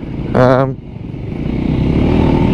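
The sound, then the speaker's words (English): A VOGE 300 Rally motorcycle engine rumbles steadily as the bike is test-ridden off-road on tracks, with a brief higher-pitched rev surging early on before settling back into a constant, rough drone. “VOGE 300 Rally Test Ride”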